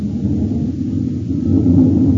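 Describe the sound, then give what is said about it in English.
The engine of a Northrop F-89D Scorpion, a US Air Force fighter interceptor, roars loudly as the test pilot prepares to take it up: a deep, steady rumble that swells slightly toward the end, with no voices over it. “Hear that? That's music to Bob Love. It's the roar of the Scorpion as he prepares to take it up.”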